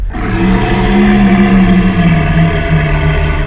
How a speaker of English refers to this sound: You and everyone else in this chamber hears the roar of a dragon turtle.